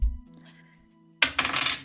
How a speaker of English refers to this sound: And if I roll a... Is temptation dice a d6?